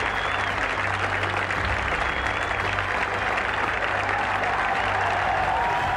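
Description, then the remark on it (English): A large outdoor golf gallery crowd cheers and applauds continuously, a dense roar of clapping and shouting that stays loud and steady throughout, with a low rumble underneath. “Fans just, like the Red Sea, coming back together, they just went whoosh, never saw the ball land. And it was pandemonium.”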